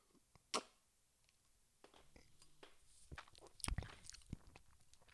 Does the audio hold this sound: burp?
no